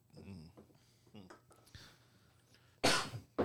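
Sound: cough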